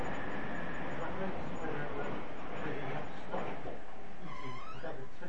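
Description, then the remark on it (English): Trains rumble past in a loud, continuous wash of noise, with a rising squeal near the end. Voices are heard talking over the din. “But you have to shout because there's lots of trains going by.”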